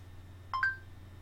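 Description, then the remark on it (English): An Android phone's voice-search beep: two quick electronic tones, the second higher than the first, short and clear over a faint low hum with no talking. “Check this out. Okay. Android phone. Who played Harry Potter?”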